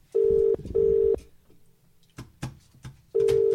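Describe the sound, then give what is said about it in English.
Loud, steady telephone keypad tones beep three times, two in quick succession and one after a pause, with soft clicks and handling noises in between. “None of these buttons work.”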